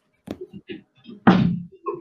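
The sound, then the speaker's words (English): A door swings shut with one loud thump, preceded by a few soft handling and shuffling noises and followed by a brief quieter knock. “Please close my door.”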